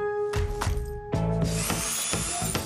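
A Craftsman 20-volt cordless drill whirs up in short bursts, a steady motor whine starting and stopping, then a longer, louder run with a rough grinding edge, with no voices.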